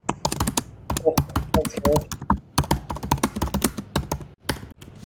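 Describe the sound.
Rapid, loud clacking of keys on a computer keyboard, typed in fast irregular bursts, with a faint voice briefly murmuring underneath.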